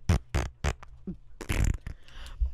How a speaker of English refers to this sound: See, we're being funny. Funny fart.